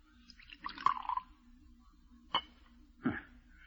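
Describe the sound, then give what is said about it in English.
A short splash of liquid poured into a glass tumbler, followed by two separate light clinks of glass. Fairly quiet, with no talking. “Pour it out.”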